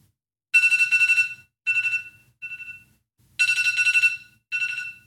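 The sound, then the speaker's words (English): An electronic alarm chirps in loud, rapid bursts of beeping tones, separated by short pauses, repeating over and over with no talking, marking the start of a two-minute timed session. “My 2 minutes will start when the alarm goes off.”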